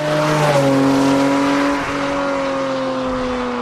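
A Cayman GT4 RS sports car engine drones steadily at high revs on a track, its pitch holding then dipping slightly as it shifts, loud throughout with broad road and wind noise, no voices.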